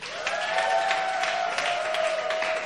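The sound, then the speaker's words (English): An audience applauds steadily, a dense wash of many hands clapping with a sustained high tone running through it, loud and even throughout with no talking. “Come on, give her another round of applause.”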